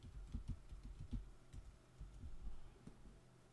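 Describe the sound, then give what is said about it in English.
Soft, irregular clicking of keys on a computer keyboard, a handful of quick taps scattered over a few seconds, fairly quiet with a low background hum and no voices. “would this fucking keyboard work? It works worse than Priscilla's brain.”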